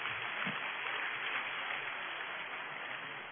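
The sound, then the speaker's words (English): An audience in a church claps steadily, a dense, even wash of many hands at moderate loudness that holds without pause for several seconds. “The clapping started here, so this is my favorite section.”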